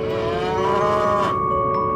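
A cow lets out a single long, low moo, loud, with a steady droning tone that fades near the end. No one speaks.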